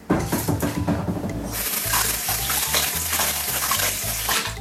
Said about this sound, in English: All right, now it is officially time to wash your hands.